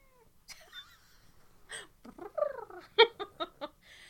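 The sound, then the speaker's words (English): A large black cat vocalises with a string of short, rising meows and chirps, ending in a few quick, clipped calls. No one speaks. “Max is our special guest on this week's on this episode. He is a large black cat with a lot of opinions about film.”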